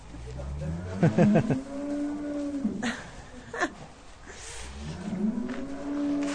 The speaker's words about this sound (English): A whole lot of mooing going on.